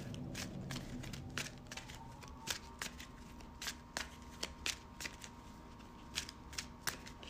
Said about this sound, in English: It's guarded, so after I shuffle my deck, I got to put something on it. Hopefully it's an encounter card, and I can just snag it. So I shuffle my deck.